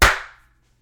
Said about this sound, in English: Oh, should we clap? Oh, shit. Good call. All right. 3, 2, 1.